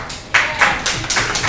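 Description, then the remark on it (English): Brief audience applause at a stand-up comedy show, made of a handful of sharp, crisp claps in a loose, roughly steady rhythm, fairly loud, with no voices over it. “I wasn't looking for an applause break, but it gives me a nice pause to look at what I wrote.”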